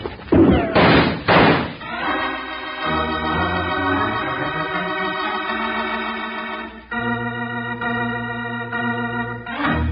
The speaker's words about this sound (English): Yank open the door, Jingles, and duck.